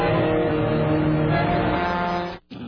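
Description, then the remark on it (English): Horns of more than 300 trucks blare loudly and continuously in a dense, overlapping chorus as they drive through downtown Washington, D.C., in the rain in a protest against rising gas prices, cutting out for a split second near the end before sounding again. “More than 300 trucks slashed their way through downtown Washington in the rain with their horns blaring.”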